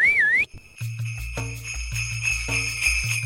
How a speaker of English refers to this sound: Dodging Tweedledum and Dumber, I whistled for one of the Courier and Ives brand sleighs at the end of the platform.